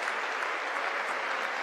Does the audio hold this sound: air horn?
no